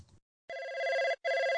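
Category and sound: signal or alarm, telephone ringing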